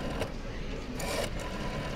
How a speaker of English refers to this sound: I dialed the cab company on the phone behind the bar.